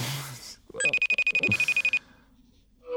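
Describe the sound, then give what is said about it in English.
A phone rings on an outgoing call to someone's other phone: a bright, high electronic trill pulsing rapidly for about a second, clear, with a faint murmur and noise before and after. “I'll call him on his other phone.”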